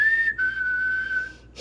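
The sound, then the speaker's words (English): A person whistles one long, steady note as a warning signal, held for over a second with a brief break near the start, fairly loud, followed by a short soft rustle. “You just started whistling, yeah.”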